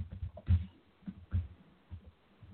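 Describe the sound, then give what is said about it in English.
Heavy, irregular keyboard typing of a tweet: a series of dull, bassy thumps and knocks landing at an uneven pace, with no voices. “I gotta type something really quick. I'm sorry. It's gonna sound bangy.”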